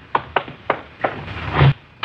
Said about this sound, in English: We just got back from Santa Ana, where we'd been questioning a red-headed suspect, and we'd flopped in the squad room when Chief Backstrand's door opened.